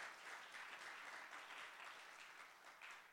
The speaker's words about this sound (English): Can we give the Lord a round of applause? Можем мы поаплодировать Богу?